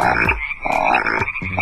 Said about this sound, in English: Once upon a time, there was a lonely Sahuencus water frog named Romeo. For 10 years, he lived alone in an aquarium in Bolivia, and everyone thought he might just be the last frog of his kind.